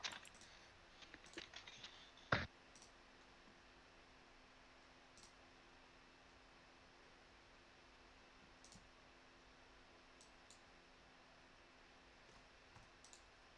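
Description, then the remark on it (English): A quick flurry of computer mouse clicks in the first couple of seconds, ending in one sharper click, then only a steady fan-like hiss with a few faint, scattered ticks. “By the way, I can hear your mouse clicking”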